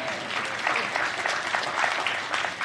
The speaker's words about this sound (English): So we are planning a wedding now at our house. We recognize, you can applaud for that.